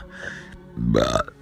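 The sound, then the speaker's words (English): A single loud burp, low and throaty with a rising tonal swell, lasting about half a second after a brief quieter vocal rumble. “Man, I'm full of burps.”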